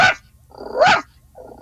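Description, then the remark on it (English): A person imitates a small dog with quick, yappy barks made while breathing in: a sharp yip at the start, a louder higher bark in the middle, and a softer short yap at the end, with no talking. “Or a smaller dog.”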